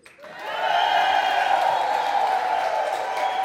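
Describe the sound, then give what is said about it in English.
A church audience erupts into loud, sustained cheering and shouting with applause mixed in, encouraging its young people, rising quickly and holding steady for several seconds as one dense wall of crowd noise. “This cheering and shouting is for you guys.”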